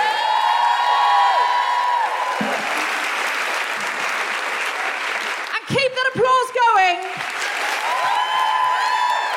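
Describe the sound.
Sustained audience applause with steady clapping throughout, joined by cheers and whoops; a burst of shouting and whistling voices rises briefly in the middle before the clapping continues.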